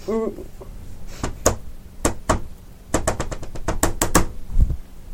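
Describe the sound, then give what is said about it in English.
A rhythmic secret knock rapped on a hard surface: a couple of spaced knocks, then a quick run of taps in a patterned rhythm, loud and crisp, with a brief voice murmur at the start. “What's the secret knock? I don't know. Well, we're stuck here. We can't tell anyone else. Well, right. But tell us what it... Give us a knock.”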